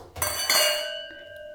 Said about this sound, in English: But yeah, let's cheers, bitches.